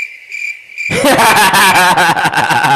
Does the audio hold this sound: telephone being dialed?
no